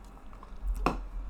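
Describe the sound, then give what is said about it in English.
A single short, wet sip or slurp of a sea moss drink, a quick liquid squish rising briefly out of a quiet, low-level background hum. “Just wanted to put that out there as I sip my vaccine.”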